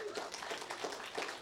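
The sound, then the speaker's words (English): Sparse, half-hearted clapping from a small church audience in Bellingham giving Jesus a hand during a sermon, soft and uneven, with scattered claps blurring together rather than building into full applause. “That was very Bellingham of us. We sort of clapped.”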